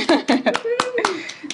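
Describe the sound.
A handful of sharp, irregular hand claps ring out over about a second and a half, with someone's voice murmuring and rising in pitch between them.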